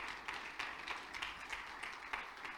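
A worship crowd claps hands to the Lord, a dense, steady patter of many overlapping claps with slightly louder bursts recurring in a loose rhythm, no voices standing out.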